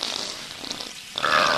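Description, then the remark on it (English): A short, buzzy video game fart sound effect, loud, sputtering for about a second before swelling into a brighter, whiny tone at the end. No one speaks. “You see, you can also create an explosion by pulling and holding the L button and expelling gas with the R button.”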